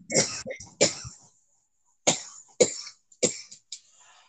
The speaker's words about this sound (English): Nana, I'm really getting worried about you and that cough. I'm more worried about my stress levels and why they're making me smoke so much that I got that cough.